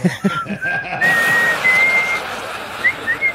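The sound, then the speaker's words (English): A person whistles the theme tune of the TV show Mama's Family, the notes rising in stepped sustained tones, with a brief chuckle at the start and faint breathy laughter near the end. “See, I can do Mama's Family too, the Whistle Mama's”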